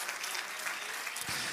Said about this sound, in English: Oh, clap your hands to the Lord and shout to God.